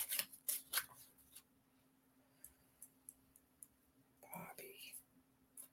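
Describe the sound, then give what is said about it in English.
A deck of cards being shuffled: a few quick, soft papery riffles at the start, then scattered faint flicks and taps, with a brief hushed voice near the end. “Let me shuffle these cards.”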